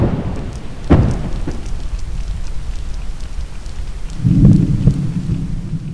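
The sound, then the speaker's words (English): Underwater explosions made by people searching for oil and gas in the ocean: a sharp, heavy boom early on, then a longer rolling blast later, both over a steady deep underwater rumble. “This is the sound of explosions, 爆炸, made by people looking for oil and gas in the ocean.”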